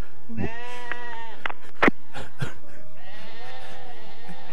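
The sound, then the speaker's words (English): A sheep bleats twice, each call a long, quavering baa, with a few sharp knocks and clatters in the short gap between the calls. “And put it in the field with all the other sheep.”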